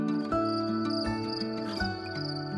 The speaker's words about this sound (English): It was the gentle flowing of a stream, the rustling of the leaves, and the soft chirping of crickets.